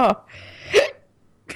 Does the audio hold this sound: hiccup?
yes